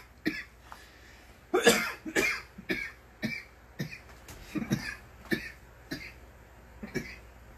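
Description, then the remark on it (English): A sustained coughing fit: around a dozen harsh coughs in quick, uneven succession, some doubled up, with short gasps between and no talking. “And shit, I told you, pull up your smoke, pull up your drink, cough on it.”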